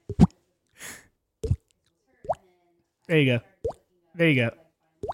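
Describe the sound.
A voice imitates a leaky faucet dripping with a series of sharp mouth plops at an uneven pace, broken by a breathy hiss and two longer, warbling vocal bloops.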